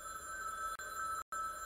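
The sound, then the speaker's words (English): The bell of an old telephone in a red telephone booth, once used by meat traders to phone orders, rings steadily and loudly, its bright metallic trill sustained with a brief break before resuming, heard on its own without any talking. “This phone still works.”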